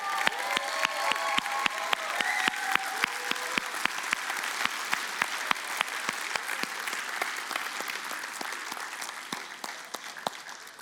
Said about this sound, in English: All of you that are standing, you got to get ready to get baptized. Come on, let's clap for them. They're getting ready.